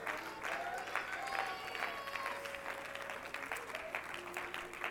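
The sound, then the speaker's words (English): A large crowd claps steadily in a dense, continuous wash of applause, with scattered shouts and cheering voices rising above it for the full five seconds, as the audience applauds and shouts to the Lord. “Would you add your voice with your applause, and would you shout to the Lord here today?”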